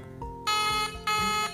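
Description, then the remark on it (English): An outgoing phone call's ringing tone sounds twice, two short, bright electronic bursts separated by a brief pause, fairly loud with no voices. “Okay, it's ringing.”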